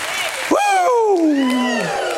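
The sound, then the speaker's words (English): An audience claps and cheers in praise of Jesus in a steady wash of applause, while a loud voice rides over it with a long, falling, drawn-out shout. “If you know that Jesus has touched you, give him a hand clap of praise.”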